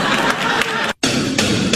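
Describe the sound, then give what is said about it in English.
An audience boos loudly in a thick, sustained wash of crowd noise, broken once by an abrupt split-second silence before the jeering resumes at full strength. “Keep booing. That's how you lost the last election.”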